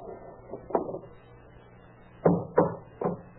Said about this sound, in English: Hey, what are you trying to do to that door? Take it off the hinges.